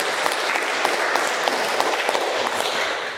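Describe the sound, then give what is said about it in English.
Steady applause from a group of people, a dense crackle of many hands clapping at once with no pauses, holding an even, fairly loud level before tapering slightly at the end. “We give them a clap.”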